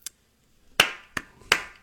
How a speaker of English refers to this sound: Yes. Thank you. A smattering. Woo! A smattering of applause.